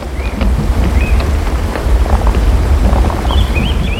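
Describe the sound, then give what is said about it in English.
A loud, steady roar of a brown, flooded river rushing past, with a deep rumbling undertone of boulders grinding under the surface as the current smashes them against each other, continuous throughout, and a few faint high chirps above. “I could hear boulders grinding deep under the surface as the flooded river caught them up and smashed them against each other.”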